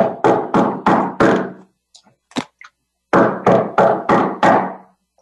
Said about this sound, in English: He walks up 7 stone steps, gray stone. He gets to the door, and he knocks on the door.